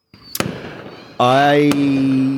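A voice imitates Sydney Harbour Bridge fireworks: a sharp pop, then a long, rising whistling tone that levels into a steady drone, broken by a second crisp bang, fairly loud.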